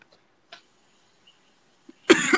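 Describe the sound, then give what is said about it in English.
A loud, harsh cough from an itchy throat bursts out near the end after a quiet stretch with a small throat click earlier, no talking. “I'm coughing because my throat's a little itchy.”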